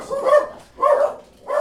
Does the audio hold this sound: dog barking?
yes